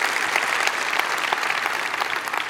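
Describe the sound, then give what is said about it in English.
A crowd applauds steadily, a dense wash of many hands clapping at once with sharp individual claps poking through, holding at an even, fairly loud level throughout, clapping in praise of Jesus Christ as Lord. “We should clap for that.”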